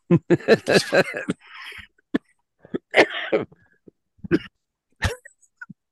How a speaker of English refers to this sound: I don't have COVID. I got a cough.